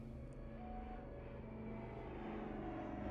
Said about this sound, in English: The sound of an approaching plane broke George's train of thought. He watched it come over the mountains and eventually vanish in the distance.